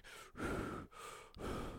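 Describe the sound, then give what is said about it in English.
A voice imitates the heavy, menacing breathing of a serial killer: three or four loud breaths in a steady in-and-out rhythm, with brief pauses between them and no talking. “Then the serial killer, you just hear breathing.”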